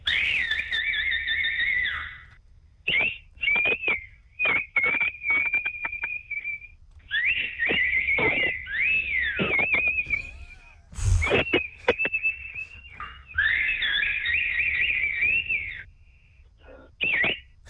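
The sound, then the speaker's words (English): Two people whistle back and forth in a whistle-off contest on The Edge radio show, with bright sustained tones, warbling trills and quick chirps, fairly loud, with short pauses between bursts and no talking. “Okay, now it's a whistle off.”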